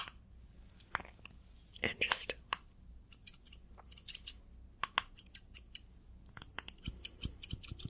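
Scissors snip through hair in a steady series of crisp, sharp clicks, some in quick bursts and others spaced apart, with soft whispery rustling between cuts, during a haircut in a barber shop roleplay.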